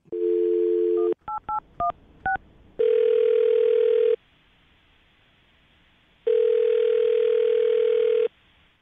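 A steady telephone dial tone gives way to a quick series of touch-tone beeps as a phone number is dialed for a call by the Brook and Jubal in the Morning radio show, followed by two long ringback tones separated by a pause of silence.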